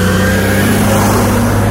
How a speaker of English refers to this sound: And this is going to be a really loud truck.